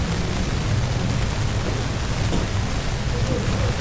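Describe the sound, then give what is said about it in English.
Heavy rain pours down hard outside in a steady, dense hiss, with a deep low rumble like thunder rolling underneath throughout; the storm bends the bushes and trees. “See, some of y'all didn't see that rain was coming down so hard out there.”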